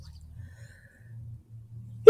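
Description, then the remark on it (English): A low, steady hum fills the quiet for a couple of seconds, then a single sudden, loud sneeze bursts out at the very end and cuts off abruptly. “I thought I was going to sneeze again, but I didn't. Sorry, I didn't pause in time for that first one.”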